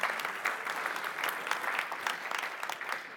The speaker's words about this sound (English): Round of applause for Alan, please.